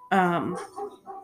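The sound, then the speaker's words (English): A dog lets out one loud, tonal bark that bends in pitch, followed by two shorter, softer vocal yelps. “And, oh, hello, dogs.”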